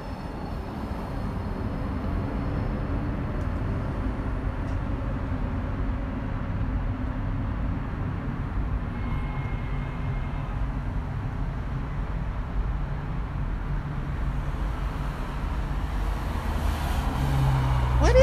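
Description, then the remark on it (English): Street traffic rumbles steadily outside a door, a continuous low roar of passing vehicles that swells a little louder toward the end, with no one talking. “And I'm just going to check the traffic outside my door”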